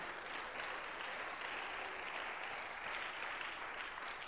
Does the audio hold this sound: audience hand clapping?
yes